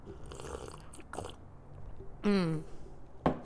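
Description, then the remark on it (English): A few soft, quiet slurping sips of morning coffee, then a low voiced sigh of satisfaction that slides downward in pitch, and a brief sharp click near the end. “So let me take a sip.”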